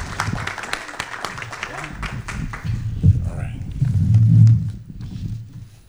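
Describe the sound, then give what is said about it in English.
An audience at a candidates' event claps steadily for all the candidates, the MC and the organizing committee, a dense patter of many hands that carries on beneath a murmur of voices, with talking growing louder toward the end as the clapping thins. “Again, I'd like to ask that you would give all our candidates a round of applause, our MC, and also for our committee tonight who is responsible for putting this together.”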